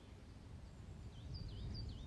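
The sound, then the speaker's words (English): Faint, distant bird song in a wood: a few thin, warbling whistles rise and fall over a low, steady outdoor rumble in the second half, with no voices. “And you can hear the beautiful bird song in the distance.”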